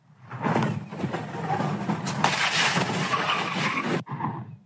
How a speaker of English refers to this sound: That Tesla blowing through an intersection, going airborne, then slamming into two parked cars and several trash cans. Multiple spectators' cell phones captured the dangerous scene near Baxter Street and Alvarado.